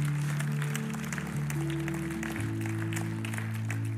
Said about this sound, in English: Come on, give a clap offering of praise to the Lord God.